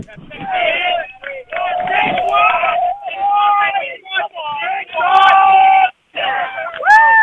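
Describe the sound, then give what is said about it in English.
A rowing crew, Wilson M1, cheers and shouts loudly and triumphantly after their bump, in repeated bursts with whoops and yells, pausing briefly between outbursts before rising again. “Yeah, I'm with Wilson M1 at the minute, who are very triumphant after their bump, and I'm wondering if I can get a little shout out from them.”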